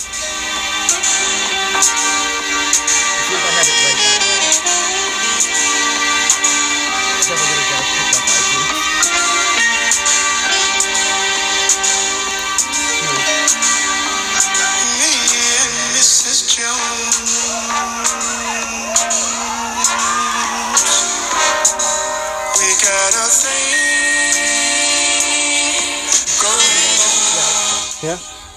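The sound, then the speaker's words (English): A 1970s soul song plays loud and continuous for the whole stretch, with sung vocals over a dense, steady band of rich harmonic instruments. “Yeah, I think it's a 70s song.”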